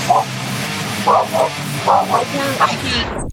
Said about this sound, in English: Oh, that's your dog. That doesn't count. I thought that was part of the song.